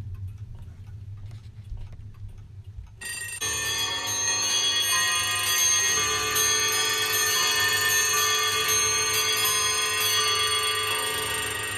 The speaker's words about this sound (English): One can feel with all those alarm clocks, it's like the many days that you have to wake up to a loud alarm clock.